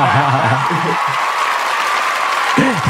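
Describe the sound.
An audience claps in a steady, dense wash of applause lasting a few seconds, applauding a man for having married early, with a man's voice talking over the start and cutting back in at the end.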